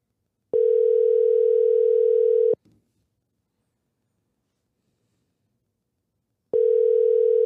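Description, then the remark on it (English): An outgoing phone call, calling someone back, rings with no answer: a loud, steady two-second ringback tone, about four seconds of silence, then the tone starting again, with no voices. “It's like you call someone, they don't pick up, and then you put your phone down and you forget about it.”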